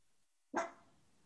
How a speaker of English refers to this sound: Molly barked.